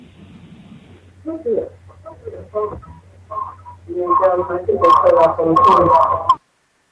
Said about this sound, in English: A little echo there.